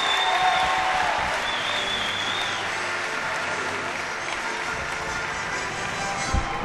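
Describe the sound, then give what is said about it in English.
A crowd applauds a two-time state champion steadily for about seven seconds, a dense wash of many hands clapping at an even, fairly loud level, with faint murmurs and a cheer mixed in. “Please give me a round of applause for your state, the two-time state champion,”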